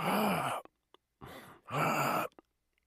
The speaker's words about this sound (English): No, I was just breathing out, sorry. Is that how you breathe now? Yes. Wait, let me listen for a second.